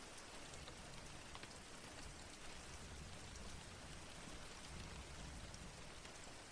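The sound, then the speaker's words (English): Steady rain patters onto a hard surface, a dense, even hiss of countless drops with scattered sharper ticks, continuous, with no voices or other sounds. “Slowly, we can open up our ears to the sound of rain.”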